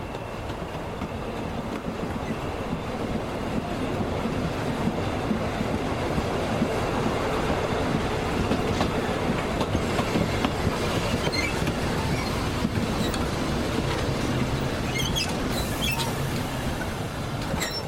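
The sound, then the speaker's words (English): A train on the Frankston line at Cannanook station in Seaford, Victoria, rumbles steadily along the railway, loud, its wheels clattering over the tracks for the whole stretch with occasional higher metallic squeals. No voices. “At 10:20 p.m, Maria Babakala got off the train and made her way off the platform, crossing the overpass to head out of the station.”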